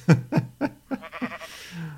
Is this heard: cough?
no